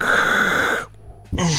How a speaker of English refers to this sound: I'll stop breathing so much.